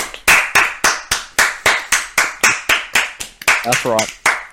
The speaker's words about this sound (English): Hold the applause. Hold the applause.